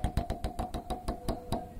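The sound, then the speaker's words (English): A prize wheel spins with a quick run of sharp, evenly spaced clicks that gradually slow, with a faint steady hum underneath and no voices. “I think we should still spin the wheel.”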